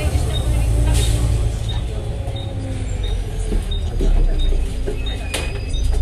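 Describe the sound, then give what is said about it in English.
Steady low engine rumble inside a moving bus on a journey into Yarmouth, with a series of short high beeps repeating at regular intervals and occasional clunks and rattles from the vehicle. “Welcome to a bit of a bus journey into Yarmouth.”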